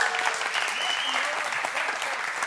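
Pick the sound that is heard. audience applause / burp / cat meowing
audience applause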